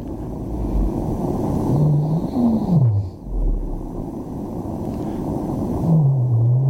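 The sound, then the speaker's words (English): Deep, drawn-out moaning calls of a blue whale rise and fall a few times over a steady, rumbling underwater hiss, with no voices present. “So that's a blue whale.”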